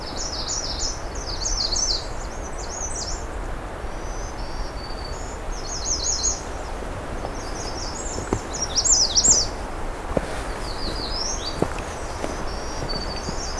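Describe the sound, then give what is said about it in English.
A black-throated blue or black-throated green warbler sings high, buzzy phrases in repeated bursts over a steady outdoor hiss with a few soft thumps and clicks, in a forest of jack pine and white spruce. “It's black-throated blue warbler, or black-throated green warbler.”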